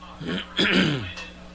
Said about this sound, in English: Excuse me for clearing my throat so much.